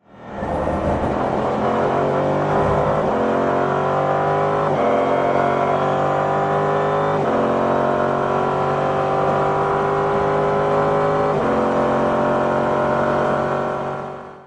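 Loud engine roar of a race car revving and climbing through gears, pitch rising in repeated sweeps with brief drops at each shift, sustained without pause and no voices.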